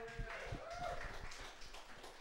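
An audience applauds two contestants before a best-of-five joke roast contest, a dense, steady wash of many hands clapping for about two seconds, with a few voices and a short whoop mixed into the noise.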